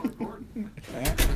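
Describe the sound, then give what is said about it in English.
A door is worked open and shut as someone goes outside: two sharp clunks about a split second apart, right after a stretch of voices talking. “Get out. I'm going outside the door.”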